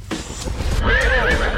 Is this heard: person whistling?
no